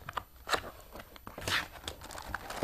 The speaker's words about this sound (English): Look at this. It's all on paper here. I'm going to unwrap it. Can you see that?